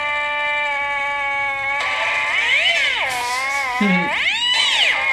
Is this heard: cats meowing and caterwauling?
yes